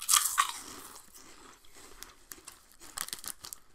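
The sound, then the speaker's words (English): Crunching of crisps being bitten and chewed into a microphone, a loud crackly bite at the start followed by irregular, brittle crunches that come and go with no talking. “But we should just chew, it'll be loud enough.”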